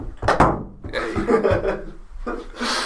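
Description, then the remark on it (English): A wooden door creaks and thuds shut as a person leaves, followed by a drawn-out rubbing scrape of wood and a few softer knocks, with no talking. “And he's out the door.”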